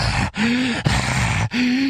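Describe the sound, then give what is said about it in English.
A voice imitates a caller's heavy, raspy breathing, three loud drawn-out breaths with a short pause between each, gasping and breathy as if panting into a phone. “And when I say thanks for the call, I dumped the call because he was breathing like this.”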